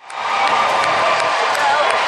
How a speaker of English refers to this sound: Now, I did a bunch of work to try to isolate that dialogue from the roaring crowd. It was really hard to hear without a bunch of work, but there's only so much you can do.